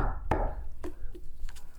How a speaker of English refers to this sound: And now he's starting to bang on the door.